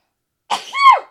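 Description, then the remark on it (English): A single sneeze, fairly loud: a sharp breathy burst followed by a short voiced, tonal release, with silence before it and no talking. “Bless you. I'm trying to orb out of this episode.”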